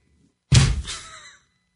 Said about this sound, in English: Just a thud on the desk.